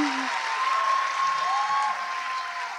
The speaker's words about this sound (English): Too much. There's too much clapping. It's too much clapping.